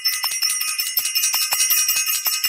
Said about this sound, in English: I want to ring the bell, definitely. Ring the bell, we can get right into it and definitely let you know, sounding the bell, you know, raising the vibration and the energy